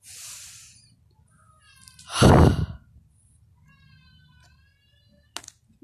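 A cat lets out a loud, drawn-out meow, followed by fainter, thin mewing sounds and a brief click near the end.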